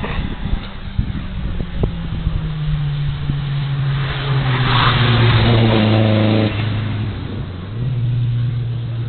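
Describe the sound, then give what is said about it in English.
A Mark 1 Ford Escort rally car coming through the hill revs hard as it passes, its buzzing pitch climbing and swelling loud, then dropping sharply as it shifts and pulls away, with no talking. “Oh, that was a little Mark 1 Escort.”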